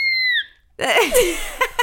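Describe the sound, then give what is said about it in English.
A short, high-pitched scream of excitement holds a steady shrill tone, then slides down and cuts off, followed after a brief pause by a burst of breathy, wavering, laugh-like vocal noise. “That was a scream of excitement.”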